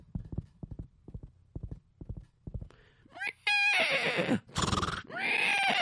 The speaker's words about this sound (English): And sure enough, he went over and helped load her stuff on the wagon. And after she was seated, he whipped the horses, and the horses began to gallop, and they galloped faster.